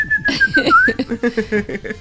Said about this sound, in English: Do the whistle. I can't whistle.